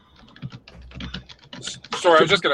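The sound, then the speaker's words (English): Rapid, forceful clacking of keys on a computer keyboard, fairly loud, in an uneven burst of hard strikes before a voice comes in at the end. “you typing hard as hell right now.”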